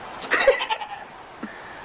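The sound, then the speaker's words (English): A goat gives a single wavering bleat, loud and nasal with a quivering, stepped pitch, lasting about three-quarters of a second, followed by a faint short grunt and quiet background. “GOATS”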